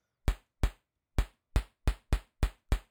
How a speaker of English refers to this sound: That crunchy drum sound. Let's turn up the decay a little bit.